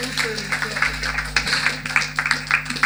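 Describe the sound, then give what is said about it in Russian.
Steady audience applause for a band at a club concert of fusion music. A dense wash of many hands clapping at once, rising and falling slightly over a low background hum with some crowd voices mixed in. “Еще раз аплодисменты для ….”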